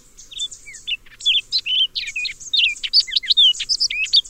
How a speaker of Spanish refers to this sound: Imaginen un arbusto repleto de tangaras y oropéndolas, como estas calandrias castañas.